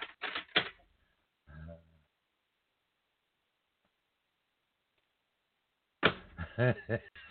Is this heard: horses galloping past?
no